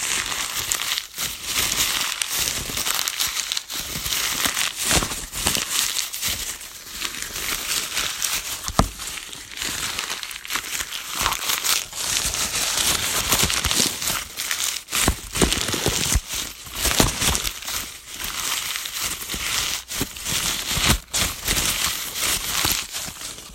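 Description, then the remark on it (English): Dry, crunchy crinkling of shredded newspaper, crumpled and squeezed by hand as a household sound effect mimicking footsteps through crunchy leaves: a dense, steady crackle with sharper bursts scattered throughout, bright and fairly loud, with no voices. “So, my first sound effect will be me stepping through crunchy leaves, but I actually will not be.”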